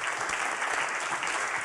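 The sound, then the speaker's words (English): An audience claps steadily, an Australian man among them the first to start, a dense wash of many hands with no pauses, sustained at a moderate level and without any voices standing out. “I like that the Australian guy in the audience was the first one to start clapping.”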